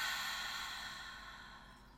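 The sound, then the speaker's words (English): A single long, airy exhale during a beginners' breathing exercise, soft, fading gradually over about two seconds with no talking. “Let's take a nice deep breath in.”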